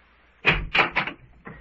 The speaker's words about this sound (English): get behind the door as I open it. You betcha. Yes, I'm coming. Are you ready? Here goes.